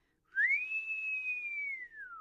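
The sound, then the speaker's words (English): An enormous purple penis-shaped novelty whistle blown at night in one long, shrill blast that swoops up, holds a piercing steady pitch for nearly two seconds, then sags slightly at the end. No voices. “A piercing shriek cut through the night, through the fog of humidity, weed smoke, and stale spilled beer.”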